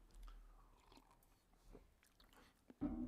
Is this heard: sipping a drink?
yes